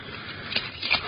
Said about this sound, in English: In the cafe of Eric Von Horn, intrigue flourished, but in the dank basement of his establishment, all was quiet save for Tarzan's heavy, drug-laden breathing.